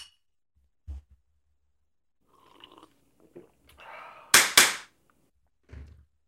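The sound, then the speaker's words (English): Two sharp, bright clinks of glasses touching close together in a toast, ringing briefly, with a few soft thumps and faint rustling around them and no talking. “Well, cheers. Cheers.”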